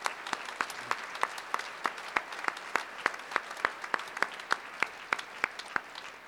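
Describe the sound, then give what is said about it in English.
Audience applause for three guests at a Penn program: a steady run of distinct, crisp hand claps at a fairly even pace, several per second, sounding moderately soft and thin rather than a dense roar, with no voices. “And I think that we should give them all a round of applause one more time, please.”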